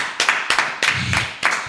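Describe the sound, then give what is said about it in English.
Several sharp hand claps ring out in a loose, uneven rhythm, with a faint low murmur underneath between them. “I clap it up.”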